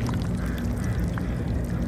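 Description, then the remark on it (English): Barnacles on large rocks with seaweed clicking as they feed while water moves calmly through crevices over them: a dense patter of tiny crackles and trickles, steady, set against a constant low rumble of moving water and city noise. “The tiny clicking sounds that you hear are the meeting of the water and the barnacles.”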